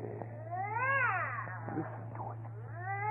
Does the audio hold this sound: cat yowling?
yes